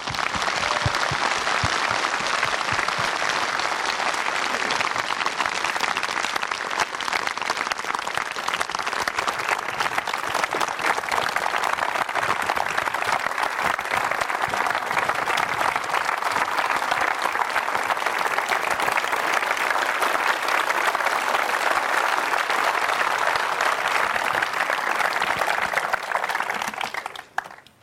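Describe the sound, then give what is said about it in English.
A sustained round of audience applause at the Science Museum, welcoming Alexei Leonov and Robin McKee. Dense and steady with many hands clapping at once, it holds at an even loudness for nearly half a minute before tapering off abruptly at the end. “Please join me now in giving them a very warm welcome and a round of applause, and they'll join us on stage.”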